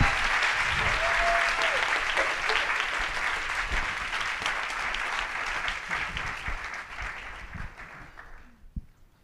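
Sustained audience applause, a dense crackle of many hands clapping at steady loudness for about eight seconds before thinning out and fading near the end.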